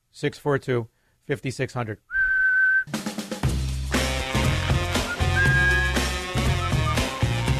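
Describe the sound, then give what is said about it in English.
A single steady whistle blast, loud, lasting under a second, comes right after a man talks and just before upbeat music kicks in. “When you find yourself about to commit sexual assault, blow the whistle until someone else stops you.”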